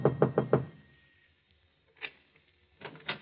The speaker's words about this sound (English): Finally, he comes to an apartment house, climbs to the top floor, and knocks on the door.